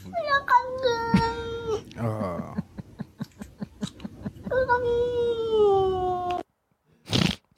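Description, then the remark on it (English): A cat in a played video lets out long, drawn-out meows with wavering pitch, loud, separated by a stretch of rhythmic clicking or tapping, followed by a brief noisy burst after a pause. “I love when people subtitle when cats meow.”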